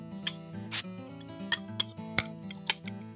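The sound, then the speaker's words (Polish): A bottle of Fuller's beer is opened: a few sharp metallic clicks and one brief, short burst as the cap comes off, with almost no hiss, over soft background music. “Fuller's praktycznie wcale nie syknął.”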